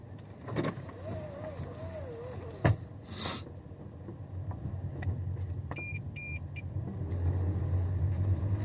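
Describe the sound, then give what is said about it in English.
A few scattered, sharp taps knock against the car body over a steady low engine and road rumble from inside the moving vehicle, with a brief run of faint electronic beeps. “That it always feels like someone's tapping on the car.”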